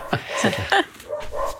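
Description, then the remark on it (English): A dog barks and yips in a quick series of short, high-pitched bursts, moderately loud, with a few whiny, drawn-out calls toward the end. “I've got a lot of barking dog right now.”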